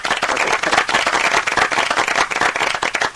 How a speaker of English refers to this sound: If I could, I'd give you 10 rounds of applause. This is up there with my favourite answer of all time. Can I give him 10 rounds of applause? Won't it get a bit boring for everybody else?